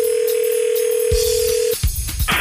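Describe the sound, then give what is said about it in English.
A steady, low-pitched telephone dial tone hums for almost two seconds, then cuts off into a series of sharp clicks and a short burst of higher-pitched line noise, as a call is placed to the Big Bone Lick double drive-in. “Give them a buzz.”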